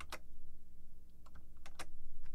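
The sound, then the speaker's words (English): A handful of sharp computer keyboard keystrokes clack at irregular intervals, a couple landing almost together as the Control and Q keys are pressed as a shortcut to switch screens, over a low steady hum with no talking. “So all I have to do is hit Control and Q on the keyboard, and it does that switch.”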